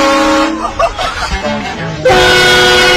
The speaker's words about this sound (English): Train horns for vehicles. Yeah. We got to put this on the Jeep. Let's put this on the Jeep. This scares people to death. Listen to this. You go down the road, you're in your vehicle, and you've had this installed in your car.